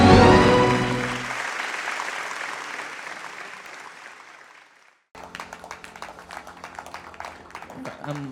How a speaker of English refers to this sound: I'm sure that clap offering was for you, not for them. Because if it was for them, they deserve more than that.